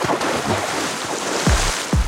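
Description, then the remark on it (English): Two heavy, loud water splashes in the Arctic sea a few meters away, between a rocky skerry and Bear Island, land about half a second apart, each a deep thudding slap from something heavy emerging from the water, over a steady wash of surf and wind. No one speaks. “She smiled at the memory, then was brought back to the reality of the Arctic landscape by the sound of a loud splash.”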